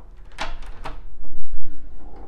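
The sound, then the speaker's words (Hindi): Two sharp metallic clacks, a lock being fastened on a door, followed by a low rumbling shuffle of handling noise. “Okay दरवाजा lock, यहाँ पर ताला, एक मिनट।”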